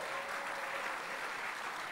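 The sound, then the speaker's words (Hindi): A crowd applauds a dance team after its dance, a dense wash of many hands clapping at once that holds an even level throughout, with no speech over it. “Can we all clap our hands for the dance team?”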